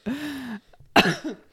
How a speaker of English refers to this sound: Still got that cough.